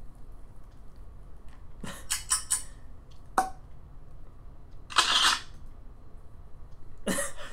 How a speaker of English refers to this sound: What was that? That was clock, bottle cork, and camera. Okay, shutter.